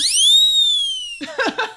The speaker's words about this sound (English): that's totally worthy of the skeptic whistle. We broke that out.